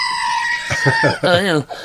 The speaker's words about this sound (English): Screaming goat. That's what I asked for Christmas. I asked for a screaming goat for Christmas. They got me this damn thing. But I love it. This works so good.